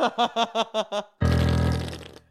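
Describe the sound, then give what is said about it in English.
A comedic fart sound effect: six quick, evenly spaced sputtering toots followed by one long, loud, rumbling blast that gradually trails off. No one speaks. “Oh, that's the fart sound.”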